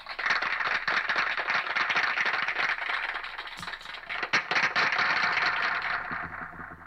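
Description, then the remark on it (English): A guitar is made to sound like applause: a dense, steady wash of crackling, clapping-like noise that holds for about seven seconds, fading slightly at the end, with no talking. “Let's do the applause through the guitar.”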